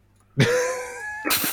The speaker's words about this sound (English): Oh, sorry, burping.